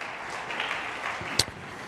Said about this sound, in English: Clap your hands one more time in the name of the Lord.